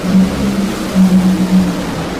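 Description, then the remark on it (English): Drag racing car engines drone at a steady low pitch as the cars accelerate down the track, a continuous rumbling hum that swells slightly in loudness a couple of times without any talking over it. “Leah racing for her points light. Tony just racing for fun.”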